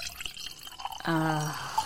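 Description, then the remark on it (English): Dry white wine (Grundbergner Trocken) glugs and pours into a glass, the liquid's ringing tone rising briefly as the glass fills, after a few soft drips at the start. Clear, no talking. “Time to fill up that glass.”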